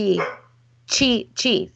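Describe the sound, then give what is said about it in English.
A dog shut away by its owners barks three times in quick succession right outside an office, sharp, each bark loud and bright, with a low steady hum running underneath. “But my husband has sequestered my dog who's barking right outside my office.”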